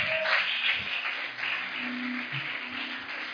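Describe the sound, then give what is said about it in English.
A crowd claps together in a steady, dense wash of applause that holds at a fairly even level for a few seconds, with no voices standing out. “Come on, you can clap better than that.”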